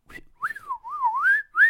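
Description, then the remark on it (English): A person whistles a wavering, sliding tune, the pitch rising and dipping in a continuous warble, fairly loud, imitating the whistling of aliens. “It's like they, like, whistle.”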